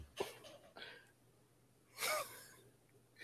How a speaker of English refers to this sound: Why he breathing like that?